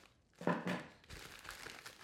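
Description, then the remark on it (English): A package sent by the speaker's mom is opened with paper crinkling, a louder burst of rustling followed by steady, scratchy crinkles and rustles for a couple of seconds. “My mom sent me something. You want me to open this first?”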